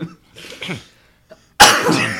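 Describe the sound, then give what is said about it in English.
A person coughs: a few softer, throaty hacks, a brief pause, then one loud, harsh, raspy cough that trails off. No speech. “Can't stop coughing, folks.”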